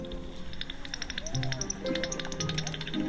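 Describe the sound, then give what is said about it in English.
Bat echolocation heard through a bat detector as a rapid, uneven run of dry ticking clicks, steady and fairly loud, with a low murmur of background voices underneath. “And whatever you hear the sounds the loudest is the species that you've got.”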